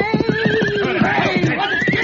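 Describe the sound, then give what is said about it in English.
A horse gallops with a quick, steady drumming of hoofbeats as a rider approaches along a trail, while a loud, high whinny wavers and slides downward over the pounding rhythm for most of the two seconds. “Rider's coming this way on the trail.”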